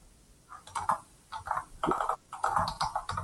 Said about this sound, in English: Chair, right, someone's got their thing on mute and I can hear them typing.